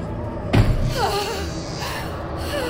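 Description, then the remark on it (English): A single heavy slam against a bedroom door lands early, a sharp, loud thud with a booming low end, followed by a dull rumble and faint background murmur. “A slam on the bedroom door shocked me out of my stupor.”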